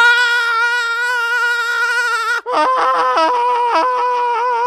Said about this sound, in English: Let's rush him. Scream like a banshee.